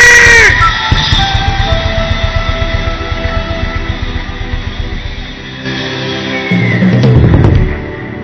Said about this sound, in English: Somebody scream! Somebody scream!